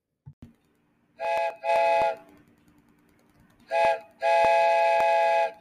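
A train whistle blows four loud blasts: two quick toots, a pause, then a short toot followed by a longer one, over a faint low rumble with no talking.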